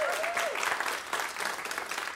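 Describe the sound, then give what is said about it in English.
A crowd at a Sunday gathering applauds steadily as lead team members are brought up, many hands clapping in a dense, continuous patter at an even loudness, with a brief whistle near the start. “You guys can give them a round of applause.”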